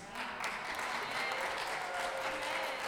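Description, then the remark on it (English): A crowd applauds steadily, a dense wash of many hands clapping at an even, fairly loud level throughout, with faint voices mixed in. “It's worthy of a round of applause.”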